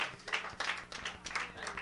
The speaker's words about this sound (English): Thank God for the hand clap. I didn't have to have it, but thank you for it anyway.